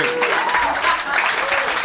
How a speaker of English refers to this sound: Everybody was applauding.